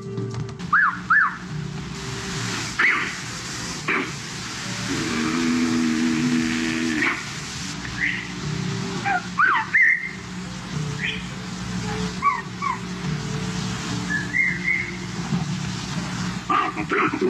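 Short, high whistles made through the vocal mechanism rather than the lips repeat irregularly over a steady low mechanical rumble, some sliding up or down in pitch, moderately loud, with no talking.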